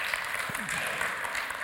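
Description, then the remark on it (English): A crowd at Bethany claps steadily at the mention of starting the Awana children's program again, a dense continuous patter of many hands at moderate volume, with a brief murmur of voices mixed in. “All of you who clapped just volunteered.”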